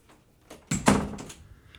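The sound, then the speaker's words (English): A door swings shut with a single solid thud and a brief rattle, moderately loud, then the sound fades back into quiet room tone. “Go close the door.”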